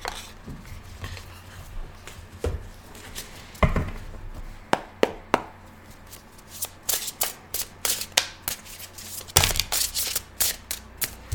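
Cards of the Sacred Creators Oracle deck being shuffled: a run of sharp, crisp snaps and riffling flutters, sparse at first, then quickening into a denser patter of papery slaps, with no one speaking.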